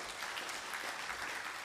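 An audience claps steadily, a dense wash of many overlapping hand claps at an even, sustained level with no voices over it.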